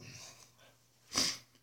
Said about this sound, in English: I need to blow my nose again. Nose blown, my chaperone.